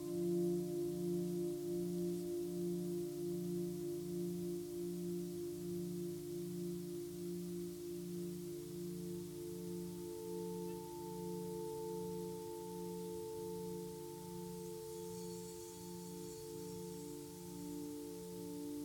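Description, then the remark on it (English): Meditation bowls ring during a meditation in a sustained, layered drone, the low tone pulsing in a steady wavering beat while higher overtones hum above it, continuous, with no voices. “Mediation with Bowls”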